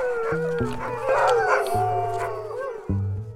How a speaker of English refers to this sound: We're out here in the Boundary Waters with a team of sled dogs today.